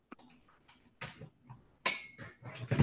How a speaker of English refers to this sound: And I also have to plug in the charger for my computer. So give me one second. He's plugging in the charger, folks. We're recording this. Sounds like it's not going very well over there.